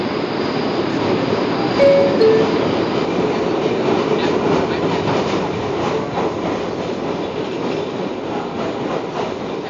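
A subway train rumbles steadily as it pulls away from a station toward the next one after the driver releases the brake, a dense low roar of wheels and motor with faint rhythmic clatter and a brief high tonal whine early on, no voices.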